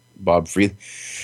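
A single loud sneeze picked up on a microphone: a voiced burst, a sharp second burst, then a trailing breathy hiss that fades out. No one speaks.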